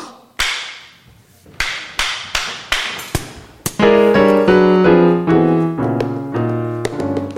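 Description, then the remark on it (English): A volley of about eight sharp pistol gunshot cracks, from a staged murder in a play, rings out at an uneven pace, each decaying quickly, with a body falling; then loud dramatic orchestral chords take over and build with punchy accents. “The gunshots, the body falling, the butler with a gun.”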